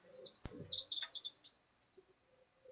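A quiet cluster of about four short, high-pitched squeaky chirps from an electric fan's failing bearing, preceded by a sharp click, over a faint low background hum.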